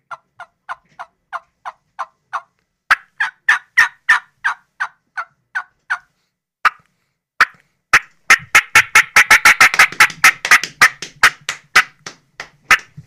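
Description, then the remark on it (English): A turkey call plays soft, evenly spaced yelps of a tree call, then breaks into a fast, excited fly-down cackle of sharp, irregular notes that speeds up and grows louder, with a few dull slaps of a leg mixed in to sound like a wing flap. “and there's something else to do that, do a tree call. And then he's going to do a fly down cackle.”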